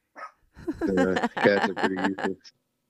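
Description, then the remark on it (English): A dog barks in a quick run of several loud, drawn-out, throaty barks, with a short yip at the start and end and no talking over it. “It's like I said, if you're not going to have a dog that barks, you may as well get a cat. See?”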